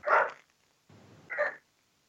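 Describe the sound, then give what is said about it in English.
A dog barks twice, two short sharp yaps about a second apart, muffled, with a faint low rumble between them and no talking. “Oh, somebody's got a dog in the background there.”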